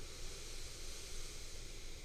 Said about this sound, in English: I'll hum with you on the next one, an inhale through our nose.